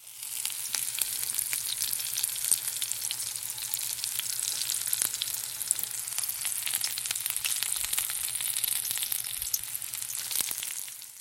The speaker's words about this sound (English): That was butter sizzling in a pan.